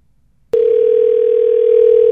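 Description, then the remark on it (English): After a moment of silence, a loud, steady telephone ringing tone of an outgoing call cuts in abruptly and holds unbroken at one pitch, harsh, with no voices. “This is your favorite part where it gets super loud in your ears as you hear the phone ring.”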